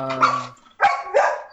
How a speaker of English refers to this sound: Hey, shush. What's the dog saying? There's some fools next door, I think, bouncing around the backyard.